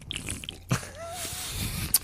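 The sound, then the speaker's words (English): A quiet sip of beer: a soft wet mouth noise, a brief slurping draw of liquid, then a small sharp click near the end, with no talking. “Let's sip superlatively. Oh, I'll do it for real.”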